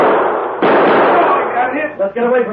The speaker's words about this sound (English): The Lone Ranger and Tonto, alerted by Silver's warning, suddenly sprang into the shadows just as the shots rang out. Drawing their guns, they fired toward the spot where the gun flashes had been seen.